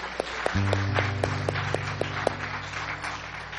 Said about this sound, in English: Can I get a big amen? Give Jesus a big hand clap today.